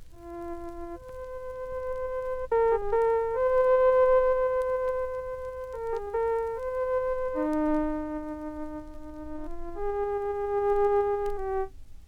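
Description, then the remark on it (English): A synthesized melody of steady electronic tones, each note held then stepping to the next pitch in a slow tune. The tones are clear and moderately loud, with no voices. “Let us synthesize a series of tones to make a melody like this.”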